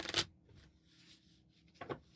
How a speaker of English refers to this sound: I'm going to do a slight bridge shuffle just so I get them upside down.